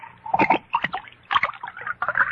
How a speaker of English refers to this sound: But before I do, pour me another glass of wine.